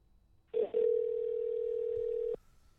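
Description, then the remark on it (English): A telephone dial tone hums steadily and loudly for nearly two seconds as a call is dialed to bring a radio guest in by phone, a single unbroken pitch that cuts off abruptly, with no voices alongside it. “Look for JP Lindstroth here. Bring him in by phone.”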